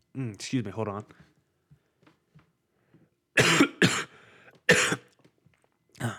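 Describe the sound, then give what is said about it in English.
A brief voiced sound, then a series of loud coughs: two harsh bursts in quick succession, another a moment later, and a final cough after a short pause. “Sorry, I had a cough real quick.”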